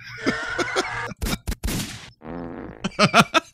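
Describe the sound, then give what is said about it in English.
A voice imitates a fart with a run of buzzing, sputtering mouth noises, several loud bursts and blats broken by short pauses, ending in a choppy, pulsing raspberry. “I love the police for farts.”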